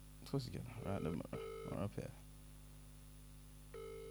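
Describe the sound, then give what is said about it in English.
A phone's outgoing ringing tone on loudspeaker sounds in steady electronic bursts, one partly under a man's voice, then a pause before the next ring starts near the end. Moderately loud. “I can hear it ringing.”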